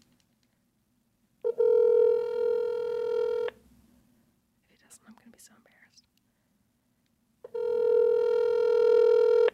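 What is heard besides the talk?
outgoing phone call ringing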